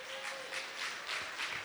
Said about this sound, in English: God loved you. He loved you. You can clap for that.